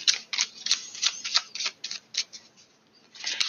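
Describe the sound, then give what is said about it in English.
Tarot cards being shuffled, a quick run of crisp papery flicks and riffles in an uneven rhythm, then a brief pause and another burst, with no one talking. “Keep shuffling.”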